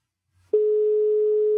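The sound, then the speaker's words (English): A steady electronic telephone ringtone starts abruptly after a faint low thump and holds at an even pitch, loud, with no voices. “I assume this is a ringtone.”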